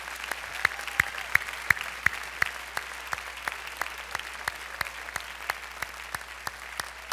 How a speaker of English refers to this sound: Can we give these families a round of applause?